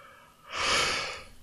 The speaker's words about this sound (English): I'm sorry, I'm yawning. It's very late now.